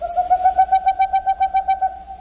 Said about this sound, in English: The boreal owl's call has been compared to a non-vocal sound of last week's mystery bird, the Wilson snipe. Here's the snipe. And here's the owl.